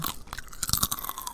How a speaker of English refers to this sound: Chew some gum?